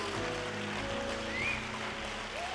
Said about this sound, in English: Come on, while you're applauding, has God been good to you now?